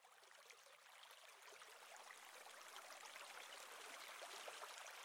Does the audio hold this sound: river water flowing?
yes